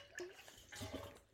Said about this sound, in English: Just took a big sip of my sports drink.